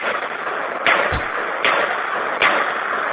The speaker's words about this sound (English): You show off. What are you shooting? Okay. It's just a little .22 Jennings. Really? Wow, it sounds good over the phone. It does. little pop shooter. It's not very powerful, but... Where are you? In your backyard? Yeah, in my driveway.